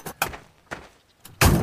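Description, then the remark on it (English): A truck door thuds shut outside a farmhouse amid a few quieter clunks and knocks, then a loud, rough burst of noise fills the end, fairly strong, with no voices. “Wendell closed the door.”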